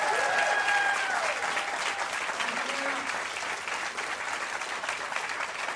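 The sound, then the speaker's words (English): Loud, sustained audience applause for guest Diane Morgan at the end of a show, a dense steady wash of many hands clapping at once, with faint whoops or whistles rising briefly near the start before the clapping carries on evenly. “Ladies and gentlemen, give a massive round of applause.”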